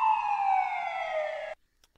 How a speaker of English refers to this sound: Yeah, I need a police siren.